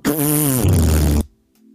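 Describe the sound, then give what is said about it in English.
A voice imitates a nitro drink can hissing and sputtering open with a long, loud, buzzy fart-like blast lasting about a second, then cutting off abruptly into near silence. “Yeah, No, the can farts for like 30 seconds when you fucking open it, first of all.”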